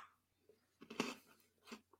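chewing a crunchy snack

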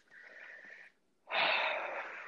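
heavy breathing

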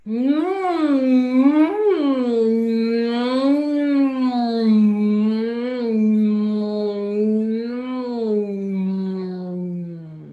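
humming

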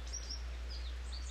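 small birds chirping

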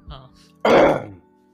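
throat clearing

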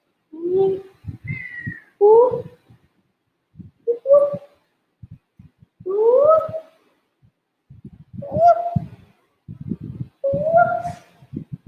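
kitten meowing

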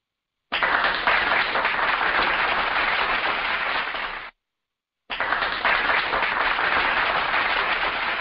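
round of applause

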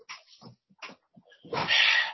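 dog whimpering

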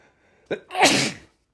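sneeze

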